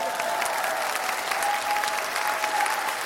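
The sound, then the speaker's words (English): A crowd applauds steadily, a dense wash of many hands clapping at an even, fairly loud level for the full length, with no voices standing out. “So after that round of applause, we also have to acknowledge another amazing news.”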